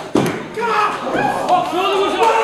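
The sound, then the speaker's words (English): A single heavy thud of a wrestler being body slammed onto the ring mat by the Bang Gang in a two-on-one assault, followed right away by a sustained swell of crowd voices and shouting. “Oh, big slam by the Bang Gang.”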